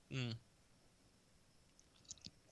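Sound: sipping wine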